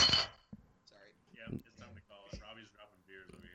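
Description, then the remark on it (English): A single sharp glassy clink rings out loud at the very start as a glass object hits the floor, followed by a person talking over a quiet background. “It would sound like a piece of metal hit the floor. No, it was glass.”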